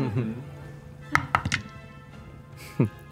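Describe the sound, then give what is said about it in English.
Dice clatter across a tabletop for an attack roll in a tabletop role-playing game: a quick burst of three or four hard clacks, followed a moment later by one more thunk, with brief voices murmuring around them. “We'll let the dice tell a story.”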